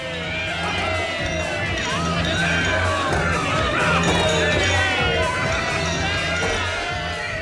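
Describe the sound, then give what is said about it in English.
A dense crowd of about 350 people packed into a hut by a river shouts and cheers over loud dance music pumping through a huge set of speakers, its bass pulsing in a steady rhythm beneath the constant loud babble of many voices. “I opened the door to loud dance music pumping through a huge set of speakers and everyone cheering and having a good time.”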